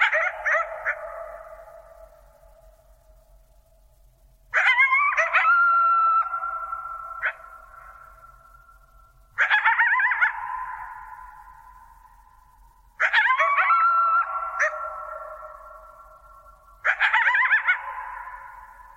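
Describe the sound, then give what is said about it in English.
Coyotes howl and yip in a group chorus, five loud bursts of wavering high howls and sharp yelps, each trailing off over a few seconds before the next begins, in a quiet open setting. “But the point that I think that they really bring out is that if there were the slightest jet rumbling in the background, the experience of these coyotes would be entirely different.”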